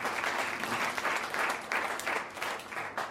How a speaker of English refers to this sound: Give God a hand clap, amen.